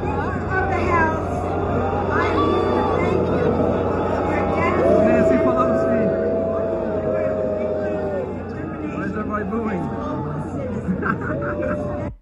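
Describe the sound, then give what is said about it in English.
A large concert crowd roars with sustained, overlapping booing and jeering at Nancy Pelosi, a dense wall of voices that swells midway and stays loud throughout, with a steady low hum underneath. “the same moment taken from opposite places in this concert, because I don't want anybody to get the impression that it's just overwhelming in one of these feeds, the sound of the crowd booing Nancy Pelosi.”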